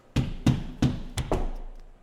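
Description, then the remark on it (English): Firm knocks on a wooden door, five in all: four evenly spaced raps followed by a quick extra one, fairly loud with no voices. “And there's the door. Slowly now. Swinging open, slowly, slowly.”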